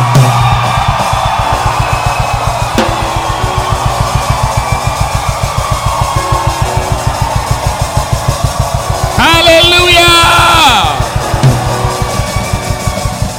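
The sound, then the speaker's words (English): An audience shouts and cheers loudly in a dense, continuous roar over a steady rhythmic pulse, with one voice rising into a sustained high whoop toward the end. “If your neighbor shouts more than you, your light will not shine.”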